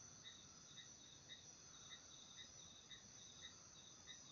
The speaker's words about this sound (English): Observe when the crickets grow louder or grow softer.